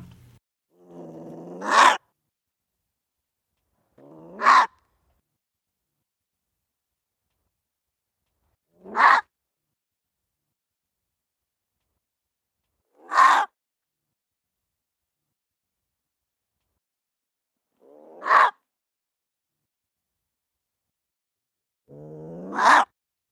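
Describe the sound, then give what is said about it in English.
A gray fox makes six spaced calls, each a short rough growl that rises into a sharp, loud bark, repeated every few seconds, with silence in between. “And I have one more sound of the gray fox for us to take a listen to. This has a little bit of a growl with a bark at the end of it.”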